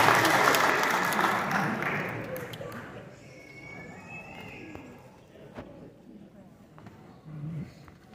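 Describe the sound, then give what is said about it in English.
An audience claps in a dense, loud burst of applause that gradually thins and fades over several seconds, leaving scattered claps and a low murmur. “Let's give them a round of applause, everybody.”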